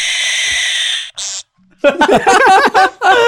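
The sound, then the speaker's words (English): Zany cartoonish bird call sound effects played at the press of a button: a sustained shrill, buzzy tone and a short chirp, then a loud warbling call whose pitch wobbles rapidly up and down, with no talking over them. “can you pick out your favorite most zany bird and then just say”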